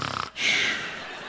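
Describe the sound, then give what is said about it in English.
A person imitates Peter snoring while asleep in a prison cell, with one raspy snorting inhale that trails into a long, breathy rush of air, preceded by a brief vocal sound. “Not even paying attention, snoring.”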